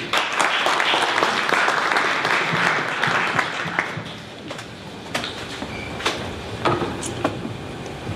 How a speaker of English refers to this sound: And one man that's helped us bring this show here, and I want him to come up and say a few words now. A big round of applause, please, for Russell Peltz.